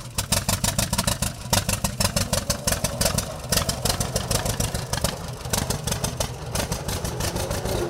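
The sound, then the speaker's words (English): A 1929 John Deere D two-cylinder tractor on full steel wheels, in North Central Illinois, idles with a loud, steady, slightly uneven chuffing beat of heavy pops over a deep rumble, with no voices. “we're going to North Central Illinois to learn about a 1929 John Deere D on full steel”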